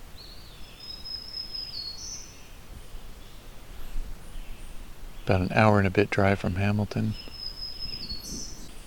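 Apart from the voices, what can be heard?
black-throated green warbler singing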